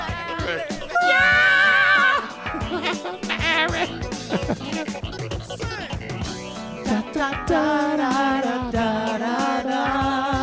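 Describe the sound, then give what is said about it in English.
A person yells loudly and at length, a strained, high-pitched voice rising to piercing cries, then carrying on in forceful, shouted bursts for about ten seconds. “You didn't have to yell.”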